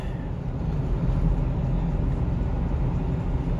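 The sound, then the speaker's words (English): A loud car engine rumbles outside, a deep, steady roar that holds at an even level for a few seconds without clearly fading in or out. No one speaks. “Loud fucking cars.”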